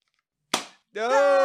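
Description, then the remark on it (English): A single sharp confetti popper bang goes off, with a quick crackling decay, followed after a short pause by a steady, buzzy droning tone. “Warranted both confetti”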